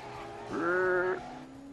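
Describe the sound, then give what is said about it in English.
A Porsche sports car's engine sounds off as a single short, nasal, high-pitched tone, more like a beep than a roar, lasting about half a second over quiet background noise. “Now listen to the engine on that thing.”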